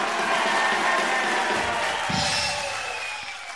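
A large crowd applauds and cheers steadily, a dense wash of clapping with whoops and shouts mixed in, staying loud before easing slightly toward the end.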